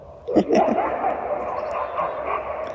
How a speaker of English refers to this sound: Dogs are getting to know each other. Oh, here we go.